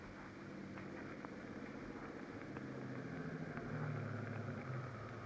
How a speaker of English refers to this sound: At the gates of the estate, you jump from the car. Wait in the darkness for the car coming down the road from the house.